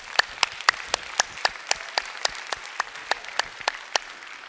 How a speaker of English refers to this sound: If you're clapping because you think I've finished, you're deceived.